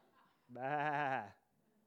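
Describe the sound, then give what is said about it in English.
A single sheep bleats once, a loud, wavering baa lasting under a second, set against a quiet background with no other sounds. “Now, it is worth taking a moment, isn't it, to think about sheep together.”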